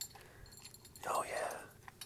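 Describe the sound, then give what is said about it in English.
A dog named Bud crunches his dry kibble breakfast, with a cluster of crisp, clinking crunches in the middle as pieces knock against the bowl, surrounded by quieter chewing. “Crunch that food. Crunch. It's almost gone.”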